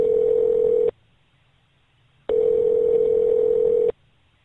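A phone line tone sounds in two long, steady electronic bursts of about a second each, separated by a pause of silence, as a call is placed to a listener's phone number. It is clear and fairly loud, with no voices.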